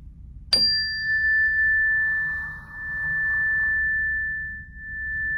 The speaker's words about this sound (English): So anyway, you just want to get comfortable if you can, and we'll just take a breath with the gong.